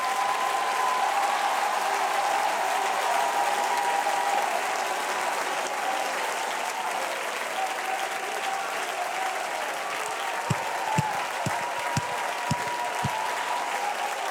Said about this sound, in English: And if you believe it, clap your hands and shout again.